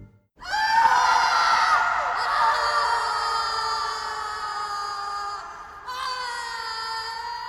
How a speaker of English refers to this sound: We were doing a scene in City Hall, and I needed a screen, and the dome seemed like a perfect place. So I told the two actresses, "Scream!"